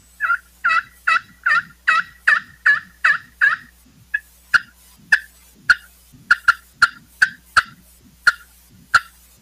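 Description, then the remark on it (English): A turkey call played on the aluminum side of a friction call, which gives a higher pitch and more volume: a rapid series of loud, raspy yelps, then a run of sharper, clipped clucks and cutts, clear with no talking. “So if it's a little windy or if I'm trying to reach out even further, I can swap over to the aluminum side and you'll get that different sound.”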